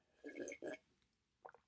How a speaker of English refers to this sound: I'm taking a drink of reverse osmosis purified water out of a nice little IKEA cup right now, and I'll sip it so you can hear.